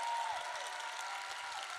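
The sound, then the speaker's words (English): A crowd at a poetry slam applauds steadily as the next poet is welcomed to the stage, a dense, even wash of clapping that holds at a constant level throughout, with a faint high tone fading out near the start. “Keep that applause going and welcome up to the stage”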